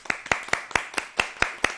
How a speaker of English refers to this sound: Let's give her a round of applause, people.